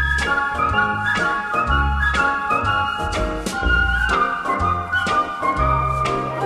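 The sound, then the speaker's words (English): A bright whistled melody rides over a full pop band, with steady drums and bass driving a bouncy rhythm; the whistling is clear and prominent, with no voices. “This song contains a lot of whistling.”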